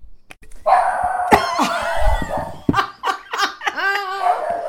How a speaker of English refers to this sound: And that, my friends, is my dog, Isabel Barbara, barking at something that is probably not there.